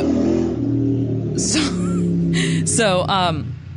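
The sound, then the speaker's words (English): A car engine hums low and steady in the background throughout, with a few short, high-pitched squeaky vocal sounds rising over it near the middle and end. “I'm here, but I'm hearing a car in the background or something, so I'm not sure what that was.”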